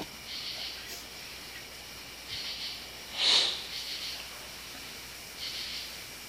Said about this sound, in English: That was me sniffling, sorry.